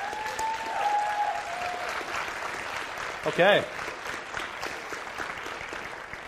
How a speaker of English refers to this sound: So if you're here, and you're a college student, why don't you go ahead and stand? We'd love to just clap for you and acknowledge that you're back.